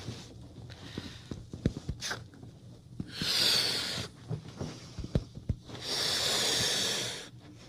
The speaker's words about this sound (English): She's blowing up the balloon. Pretty.